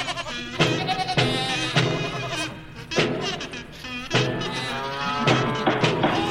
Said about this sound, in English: Okay, let's get the farm animals in here.